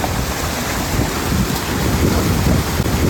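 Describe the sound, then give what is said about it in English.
Water churns and splashes continuously on the still ocean with no waves or wind, a dense, choppy sloshing of sharks thrashing at the surface, steady and fairly loud throughout with no voices. “That's all you're hearing is just sharks moving the water. Just chopping.”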